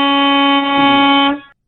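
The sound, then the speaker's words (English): One loud, steady truck air horn blast holds a single brassy mid-pitched tone for over a second, then cuts off with a brief fading tail. No voices are heard. “Okay, just to be specific, that's not a train horn. I appreciate the truckers out there.”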